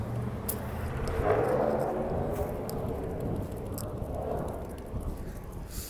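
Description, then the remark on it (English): A heavy truck, modified to be extra loud, rumbles past on a street as someone walks toward a park. It gives a deep, rough roar that swells and fades with a gritty exhaust growl. Car traffic continues steadily underneath, with no voices. “As usual, you're hearing some of the cars, and that was a truck. It's been modified to be extra loud and extra polluting, as we're trying to walk to the park to get some clean air.”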